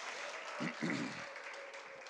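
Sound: audience applause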